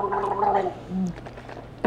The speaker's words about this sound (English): Hold on. I need a big sip of this. Wow.